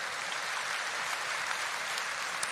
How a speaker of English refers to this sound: Clap your hands if you believe that.